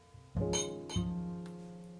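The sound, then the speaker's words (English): A glass being refilled gives two bright clinks about half a second apart, each leaving a clear, sustained ringing tone that lingers to the end; no one speaks. “Oh, he's refilling my glass.”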